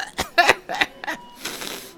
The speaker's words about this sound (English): I'm sorry, I just coughed something up on the girl behind the counter. Oh, well, don't get angry at me. I didn't mean to do that.